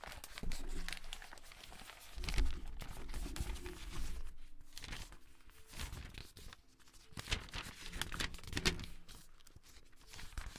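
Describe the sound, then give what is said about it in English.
Continuous paper rustling and crinkling with bursts of tearing, an irregular flurry of crisp handling noises lasting several seconds, no voices. “Let me hit you guys with that paper real fast.”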